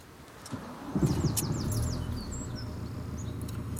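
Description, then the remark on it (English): At dawn by the sea in Southport, a quick run of about five high, downward-sweeping bird calls rings out over a steady low rumble of surf, followed by a few scattered chirps. “In the blank space between night and dawn, it belongs to the sea, to the birds, to the sky.”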